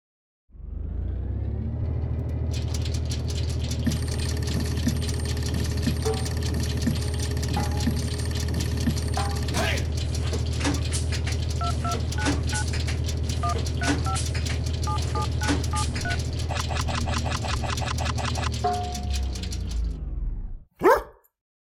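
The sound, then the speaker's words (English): A random number generator machine whirs with a steady low drone for about twenty seconds as it prints, overlaid with rapid clicking, chattering and scattered electronic beeps, then shuts off and ends with one sharp click. “So, I will now turn on the random number generator.”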